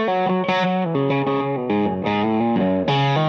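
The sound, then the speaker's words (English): A heavily processed guitar effect plays a quick run of buzzy, distorted notes with a nasal, quacking, duck-like tone, each note shifting pitch in a sloppy, warbling way. No voices. “And my stuff starts to like go, it sounds all noisy and it goes all Daffy sloppy.”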